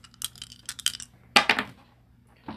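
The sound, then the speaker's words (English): Two six-sided dice clatter and tumble across a surface in a few quick bursts of clicking, with a louder cluster midway and a final brief rattle, without voices. “That's roll 2d6.”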